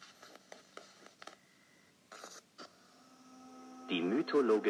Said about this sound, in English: Off the coast of New York, 1996, September, 4 o'clock, recorded anomaly, rectangular at solid structure, indefinite characteristics, 7 hours, static.